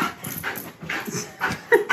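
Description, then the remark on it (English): A dog named Tej pants in quick, breathy bursts and lets out a few high, thin whimpers, with two sharper whines near the end. No one speaks. “So he's a very social dog, you know.”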